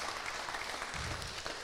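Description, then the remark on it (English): A crowd claps steadily, a dense wash of many hands applauding at once, sustained through the moment with no voices standing out. “I feel like you need to clap or something.”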